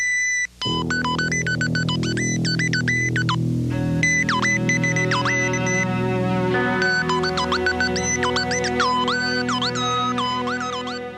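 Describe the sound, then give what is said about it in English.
Chirpy electronic beeps and warbling synth tones from an early-1980s General Electric dishwasher commercial hop rapidly up and down in pitch over a steady low humming drone, loud and continuous, like a chattering robot. “She did this incredibly catchy and almost kind of cute commercial with electronic sounds in it, as if the dishwasher was, you know, R2-D2 who was talking to you with beeps.”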